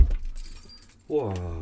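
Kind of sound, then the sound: household object, keys jangling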